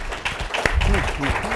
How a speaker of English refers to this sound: I appreciate the Texas Tribune for putting this great festival together. Let's get a round of applause for that, for sure.